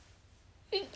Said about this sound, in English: Bless you. Isn't that like the most daintiest sneeze?